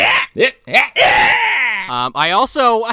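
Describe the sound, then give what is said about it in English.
A man lets out a string of short, strained cries that build into a long, anguished wail, loud, with a few rising yelps at the end: actor Sam Worthington's scream from the film Terminator Salvation. “If the Mario Brothers theme is a character, then so is Sam Worthington's scream.”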